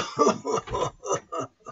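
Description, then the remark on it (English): A person acts out a fit of coughing for the game character McCabe, about five voiced, throaty bursts in quick succession, fairly loud, with no other speech. “And McCabe starts coughing.”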